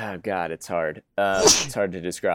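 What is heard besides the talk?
sneeze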